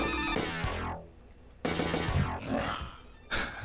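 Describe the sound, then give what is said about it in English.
A dinosaur growl sound effect: three loud, harsh roaring bursts in close succession, each one rasping and sliding downward, with the last cut off abruptly. No one speaks. “It is... the dinosaur from Jurassic Park.”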